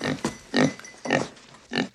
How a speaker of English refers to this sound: And we hear some strange noises at the door and in comes a pig.